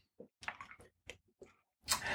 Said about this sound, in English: Excuse me, a little drink of water again. I'm talking a lot here.